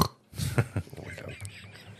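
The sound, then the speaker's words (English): A person imitates a snort with their voice: one harsh, low, nasal burst lasting about half a second, trailing off into softer breathy, throaty noises. “Nobody can snort like the snorter. I can snort.”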